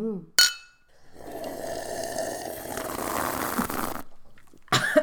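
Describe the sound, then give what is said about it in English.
A single bright clink of glass cups of beer tapping together in a toast, crisp, followed by a few seconds of liquid sloshing and trickling, then another short glassy clatter at the end. “Let's cheers, because we have glass cups this time.”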